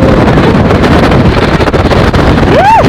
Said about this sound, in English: could you record the sound on Skellig Michael? Which I found a bit curious. I wasn't sure why people were so interested, but I decided to humour people and I got a sound of a very windy morning.